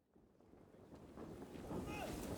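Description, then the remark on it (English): Rushing water of a fast-flowing river churns steadily beneath gusting wind at Runnymede, a boggy water meadow between Windsor and London, a broad wash of noise that swells gradually louder over a couple of seconds, with no voices present. “Beside the fast-flowing river, grand tents stand scattered across the field”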